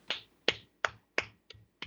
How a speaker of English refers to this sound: You can't see me, but I'm giving you a golf clap.